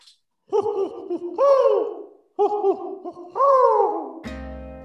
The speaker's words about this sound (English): Oh, yeah. Watch out. Here it comes. Pesky, pesky owl.